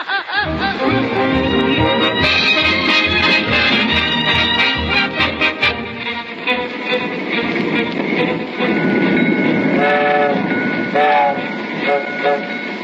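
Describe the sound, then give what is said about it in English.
A moving freight train rumbles and clatters loudly and steadily, with rhythmic clanking in the first few seconds and sustained metallic squealing tones running through the rest. “Yeah, and I've been hiding like an ostrich ever since we ditched the car and hopped this rattler.”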